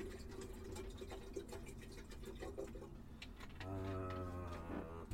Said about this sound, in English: And right, I'm gonna pop on the kettle as always. So I can make a cup of tea. 2:00. Give it some nice PG. I've just had a hang on, filling up the kettle.